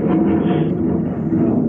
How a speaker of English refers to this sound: Whoa. I had an airplane go over. Yeah. The first one I've heard. Or it's a jet. The jets are out.